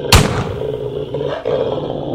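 A sharp crack at the start gives way to a dog's deep, continuous snarling roar, loud, rumbling on without pause for a couple of seconds as the dog charges.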